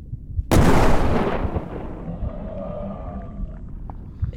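cannon firing

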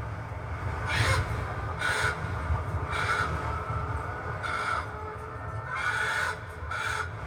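chickens clucking

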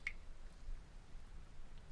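water dripping

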